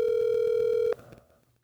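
A telephone ring tone sounds through the line, one steady electronic buzz lasting about a second before it cuts off abruptly, leaving faint background noise.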